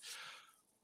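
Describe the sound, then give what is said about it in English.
A person yawns with a short, breathy exhale that starts strong and trails off quietly, with no talking. “The Vanity Fair, I felt like, was pretty like what you just did there, yawning.”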